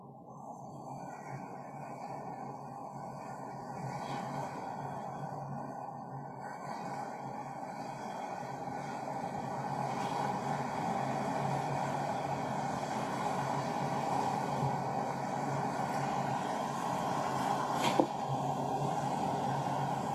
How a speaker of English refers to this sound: So just allow the sound of the sea, the creative waters of Mother Gaia, to envelop you, to flow around you, to flow through you.